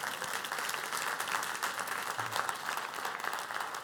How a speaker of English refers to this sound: One more time, give the Lord a hand clap of praise.